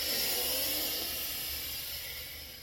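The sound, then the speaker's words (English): A steady airy hiss of breath drawn in through one nostril while the other is plugged, during a breathing meditation, continuous and soft, tapering slightly toward the end, with no talking. “In and out through the other nostril.”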